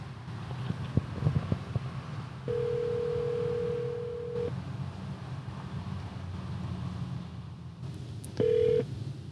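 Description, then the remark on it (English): A phone call is made from inside a car to the man selling a lot: a few soft clicks like buttons being pressed, then a steady low ringback tone buzzes for two seconds, falls silent, and starts again briefly over a quiet background hum. “We call the guy. Yeah, call.”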